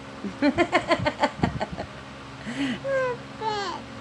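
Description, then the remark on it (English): A bird makes a quick run of chicken-like clucks, about a dozen short rhythmic pulses, then follows with a few rising, squawky whistles, fairly loud with no one talking. “Oh, that's not a chicken, that's a bird.”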